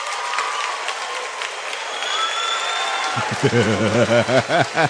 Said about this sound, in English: Now, see, y'all some disillusioned ladies clapping right now. You know, there was an actual difference in the clap sound there. Yeah. A lot less.